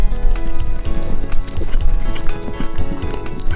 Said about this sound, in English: You're right, horses.